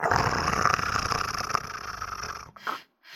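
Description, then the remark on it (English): A feline beast's low, raspy growl rumbles steadily for about two and a half seconds as it comes toward the listener, then a brief breathy huff follows before the sound cuts to silence. “then you hear the footsteps of this feline beast come towards you, and you hear it kind of growling.”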